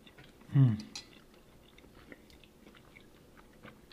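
People chew creamy, mayonnaise-based potato salad served as a side, with soft, quiet, wet mouth sounds; a brief low hum of voice comes early, then faint chewing continues through the rest.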